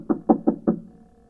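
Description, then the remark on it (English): Four quick, evenly spaced knocks on a wooden door, firm, followed by a faint low hum as all settles into quiet. “I ran into a corner and hid when I heard them knock on my door.”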